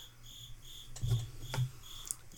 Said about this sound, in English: I'm gonna summon my inner bird prowess to go eat the cricket in the wall. Just fucking hunt the wall cricket down.